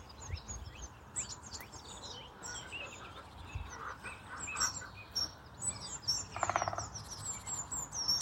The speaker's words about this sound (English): And that in the background is a woodpecker. It's all going on.